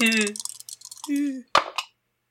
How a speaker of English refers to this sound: So I'm going to roll 2 dice, take the lowest.